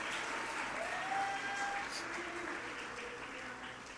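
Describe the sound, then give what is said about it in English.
An audience at a church service claps steadily in a dense, continuous wash of applause, with faint tonal lines of voices or music drifting beneath the clapping throughout. “Come on, jump to your feet and clap your hands and shout, it's not over yet.”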